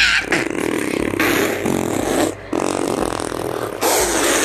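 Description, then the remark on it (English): A voice blows a long, buzzing raspberry imitating a fart, loud, sputtering in several continuous bursts with brief breaks over a few seconds. “Beat your beans to fart like this!”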